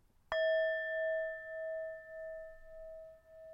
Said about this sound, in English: Listen, I actually, people complained in the previous one that when I said time's up, it was making them afraid. So I actually bought a little gong specially for it. Listen, this is how soft is this?